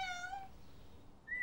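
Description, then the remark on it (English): A kitten meows twice with no one talking: a drawn-out, tonal meow first, then after a short pause a brief, higher-pitched mew, both fairly soft. “I will call it Mark because he has marks on its body. Yeah, Mark the cat.”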